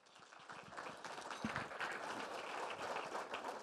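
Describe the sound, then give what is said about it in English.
A crowd applauds steadily to welcome a panel of speakers onto the stage, a dense wash of many hands clapping at once with no voices over it, holding a fairly even loudness throughout. “About a round of applause.”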